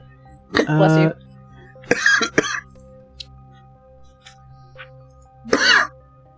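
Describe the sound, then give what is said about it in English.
A sneeze: a voiced, drawn-in burst followed by sharp, explosive breathy blasts, with one more short burst a few seconds later, loud against a quiet background. “Bless you.”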